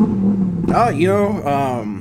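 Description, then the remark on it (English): A car engine idles with a low, steady rumble, then revs up sharply in two quick, rising-and-falling bursts, loud. “I think we got to hop in the car ourselves here.”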